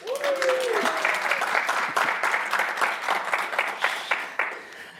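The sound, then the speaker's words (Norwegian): A live audience at Handelshøyskolen BI in Nydalen applauds steadily during a recording, dense overlapping claps; a brief whistle-like tone rises at the start and the clapping stays loud throughout. “Og denne episoden litt spesiell, for den spiller vi nemlig inn på Handelshøyskolen BI I Nydalen med publikum.”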